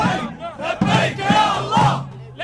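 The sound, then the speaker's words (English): A large protest crowd, about a third of them refugees living in camps in Turkey, chants loudly in unison, many raised voices shouting rhythmic phrases in repeated bursts about half a second apart, with a steady roar of voices underneath throughout. “About a third of the crowd were refugees living in camps in Turkey.”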